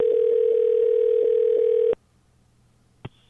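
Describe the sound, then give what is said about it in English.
A steady, mid-pitched electronic tone from the College View Apartments answering machine signals recording, holding evenly for about two seconds before cutting off abruptly. A faint line hiss follows, ending with a single soft click. “You have reached College View Apartments. Please leave a message at the beep.”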